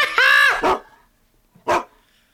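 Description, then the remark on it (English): A dog barks: a loud, tonal yelp followed quickly by a gruffer woof, then a pause and one more sharp bark. No one speaks. “Hey, doggy, I have a treat for you.”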